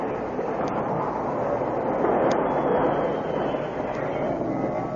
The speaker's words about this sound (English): I must make it stop. The train responded slowly to his efforts, until just a few yards from the gaping space where the bridge used to be, it came to a complete stop.